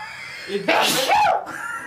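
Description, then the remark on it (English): A single loud sneeze: a short voiced intake followed by a sharp, breathy burst of noise that fades quickly, with faint background murmur on either side. “Bless you, son of a bitch.”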